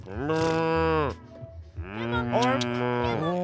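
A cow moos twice, two long, loud, drawn-out lowing calls separated by a brief pause, with no talking.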